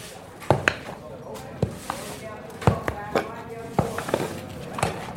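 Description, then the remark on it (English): A heavy draft horse in pulling shoes walks across a stable floor, its hooves landing in close, uneven, heavy clunks rather than a crisp clip-clop, over a low background hum. “To give you an idea, listen to this horse walking in the stable, bearing in mind that a normal horse would make a clip-clopping sound.”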